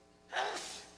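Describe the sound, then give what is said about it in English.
A single sneeze from somewhere in an audience during a sermon, a short breathy intake bursting into a hissy, spray-like release, fairly quiet, with no talking over it. “Bless you.”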